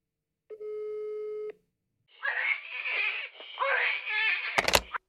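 phone call tone

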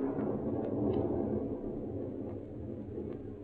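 distant thunder rumbling

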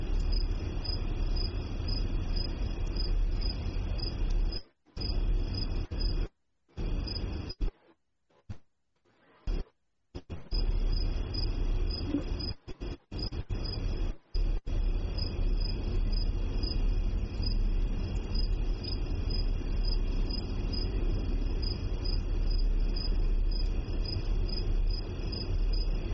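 crickets chirping

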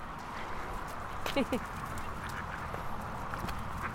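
ducks quacking

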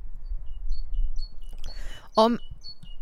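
birds chirping outdoors

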